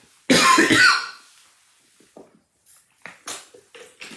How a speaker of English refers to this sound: Guys, excuse me for the cough, but it's what's going on.